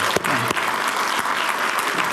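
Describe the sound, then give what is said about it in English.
A crowd applauds a group of speakers, clapping steadily, a dense wash of overlapping handclaps at a constant, fairly loud level, with a few sharper individual claps standing out and faint voices mixed in. “Can we hear it for these guys?”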